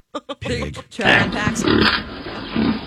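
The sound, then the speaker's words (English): Two quick pig grunts, then a longer stretch of loud, rough oinking and squealing that keeps going to the end, with no other sounds around it. “Oh, there they are now.”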